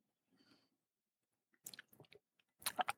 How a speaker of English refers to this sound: Just drinking my last sip of coffee